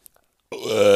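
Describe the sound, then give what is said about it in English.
A loud burp erupts after a brief near-silence, a low throaty rumble with a rising, voiced tone that holds for about half a second. “I know it's annoying that I burp.”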